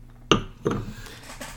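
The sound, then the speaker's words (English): Two bright glass clinks about a third of a second apart, each with a short ringing tone, followed by a few fainter ticks and no talking. “one third of the way through, you've already heard me clink a couple times”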